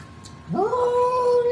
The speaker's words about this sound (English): That is not an orgasm. That is a cat.